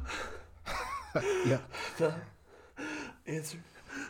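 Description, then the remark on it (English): A voice imitates breathless gasping and panting, with a series of loud, breathy bursts and voiced strains in an uneven rhythm, as if struggling to get words out. “You get called on right away and you're like, I'm panting.”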